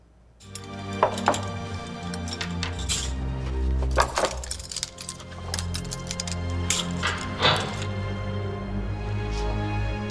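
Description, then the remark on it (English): Metal silverware clinks and jangles in scattered sharp bursts, some louder than others, over a steady low drone that runs throughout: a bunch of expensive stolen silverware as Jean Valjean, played by Liam Neeson, tries to get away with it in an older film version of Les Miserables. “His character has just stolen a bunch of expensive silverware, and he's trying to get away with it.”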